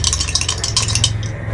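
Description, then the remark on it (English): Dice rattle and clatter across a hard surface in a quick, irregular run of sharp little clicks, over a low steady hum, ending in a soft thump; they are rolled for a Charisma talk check, landing a 3 plus 2. “Right, I got a 3 on the dice plus 2.”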